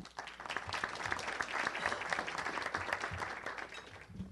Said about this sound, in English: Yeah, that really does deserve applause. Both of you need to be applauded for your efforts in the city of Wichita.